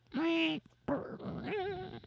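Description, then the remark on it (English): A person's voice mimics a dog: a sustained high whimper, a short pause, then a rough growling stretch that ends in a wavering, whiny yelp, all fairly loud. “I'm a dog.”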